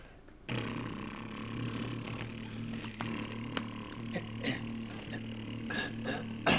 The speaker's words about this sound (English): welcome back to Driving Up and Down the River in My Boat. And today's river is the River Tyne. Off we go.